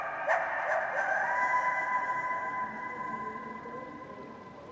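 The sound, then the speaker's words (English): A coyote's drawn-out, wavering howl rises and holds for several seconds before slowly fading, with a few yips at the start and no voices, as snow falls. “A coyote howls.”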